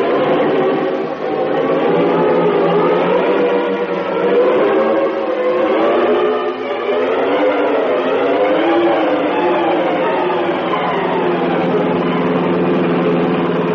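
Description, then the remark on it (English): A car engine drones loudly and steadily throughout, its pitch rising and falling gently as the car drives along a road by a lake at night with headlights on, following another car, continuous with no voices. “We'll get a roadblock thrown across both ends of the road. He'll never get through. And we'll follow in my car.”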